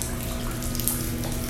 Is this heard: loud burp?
no